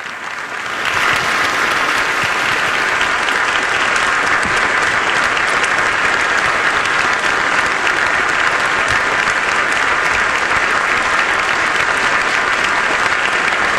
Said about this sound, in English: As you might expect, thunderous, unanimous applause for the speech from Volodymyr Zelensky that went on for quite some time.